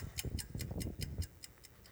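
A clock ticks in a steady, quick rhythm, about nine crisp ticks over two seconds, with a low rumbling undertone beneath the clicks and no voices.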